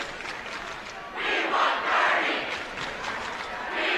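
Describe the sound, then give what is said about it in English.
The Sentinel student section roars and chants at a basketball game in Dahlberg Arena, in loud, surging waves, the cheering swelling after a quieter first second and holding steady with rhythmic pulses of massed voices. “That's Sentinel student section.”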